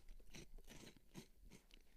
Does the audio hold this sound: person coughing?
no